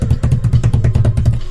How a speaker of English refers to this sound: As of anything else, I mean, I want to give, drum roll, please.